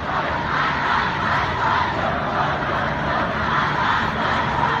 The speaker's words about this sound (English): There was a big rally in Los Angeles last year in which people were shouting, my body, my choice, and then women were shouting, my body, my choice, and men were shouting back at them, your body, your choice. Here's what that sounded like.